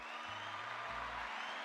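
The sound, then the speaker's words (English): A short burst of steady applause for basketball player Jokic, dense clapping blending into a continuous crackling wash for under two seconds, with a faint low hum underneath and no voices. “Jokic, you deserve an applause.”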